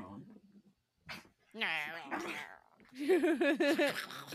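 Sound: dogs making noises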